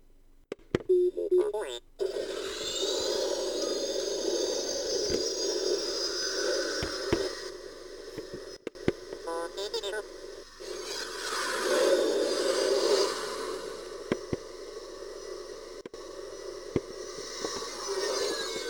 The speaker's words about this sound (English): There's also a microphone inside the helmet, and sometimes it'll make noise when you talk. Like, these TIE fighter engines seem to be entirely voice activated. It's actually kind of cool. There's a bit of an echo, though.